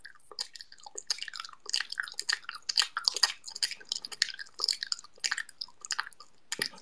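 Crunchy chewing of what the chewer says is a piece of gum, sounding like biting and munching a raw carrot, with rapid irregular crunches continuing steadily throughout, no talking.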